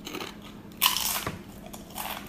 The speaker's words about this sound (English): Big crunch. Nice. Big crunch. Big crunch. Man, it's so fucking good. The just right amount of salt.